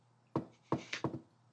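A patterned knock on a door: a single rap, a pause, a quick run of several raps, then after another gap one final, louder knock. Each knock is sharp and hollow, with no voices.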